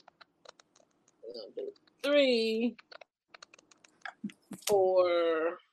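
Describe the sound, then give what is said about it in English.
Sparse, crisp clicks and flicks of cards being shuffled and drawn from a deck, with six cards to be pulled, and a couple of hummed or drawn-out vocal sounds between them. “Do another shuffle.”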